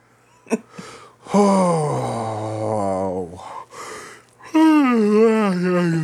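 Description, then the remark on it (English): A person lets out a loud yawn, a long groaning vocal sound that slides down in pitch, followed after a short pause by a second drawn-out voiced stretch. “I hope you like that HD yawn.”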